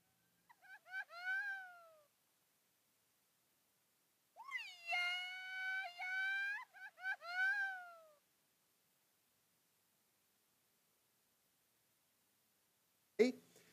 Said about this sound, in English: And I was looking all over the world, there are these traditional shouts of joy. When you hear it, you know somebody's celebrating somewhere, a birthday or something's going on. There's a party over there.